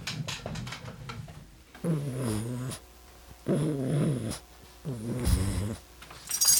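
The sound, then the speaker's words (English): Wet snorting and snuffling from two pug dogs, coming in three rhythmic bursts of a couple of seconds each with brief pauses between, rough and gravelly like snoring grunts. “Pug snortles.”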